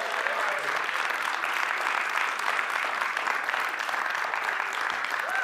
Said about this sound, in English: The Bengals, when they lose, like, 7-40, get better claps than that.